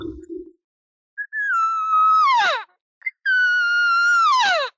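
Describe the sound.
Two drawn-out, nasal cow elk calls blown on a call, imitating a cow answering a bull elk to call him over. Each is a steady high mew that breaks into a sharp descending whine at the end. A brief low murmur comes before them, with no talking over the calls.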